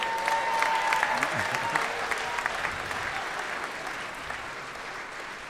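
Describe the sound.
Steady audience applause at a live Judge John Hodgman show in Seattle as the judge exits the courtroom, a dense wash of many hands clapping that stays fairly loud throughout, with a brief whistle-like tone early on and faint voices mixed in beneath.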